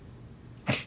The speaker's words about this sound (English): But let me hold on 1 second. Come on. I gotta sneeze, I'm sorry.